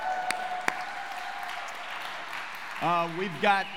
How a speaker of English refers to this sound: By the way, we've got a lot of 180 Homes meeting online right now, North Shore, some downtown. Give our 180 Homes that are meeting online a big round of applause.